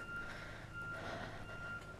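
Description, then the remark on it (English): Repeated electronic beeping from outside, like a vehicle reversing alarm, sounding faint over a low background rumble, with no one talking. “A lot of beeping going on. I hope you can all hear that beeping.”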